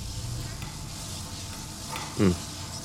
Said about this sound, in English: Air's a little wet with that steam coming out